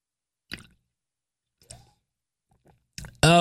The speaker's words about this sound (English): I'm going to take a little drink of this now. It's called Superberry by eBoost. You ready? Here we go. I'm going to take a sip.